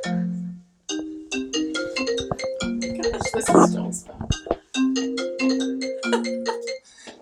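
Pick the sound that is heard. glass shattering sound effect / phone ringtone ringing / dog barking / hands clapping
phone ringtone ringing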